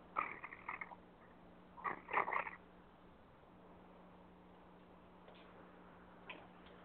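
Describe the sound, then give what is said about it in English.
A domestic cat called Kitty gives two quick clusters of soft, chirpy vocal sounds, fairly quiet, followed by a few faint clicks against a low steady hum. “Come here, Kitty, and talk to my friends.”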